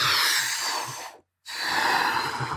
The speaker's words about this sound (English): And I kept on breathing and breathing. And I kind of almost passed out. And I didn't know why I was breathing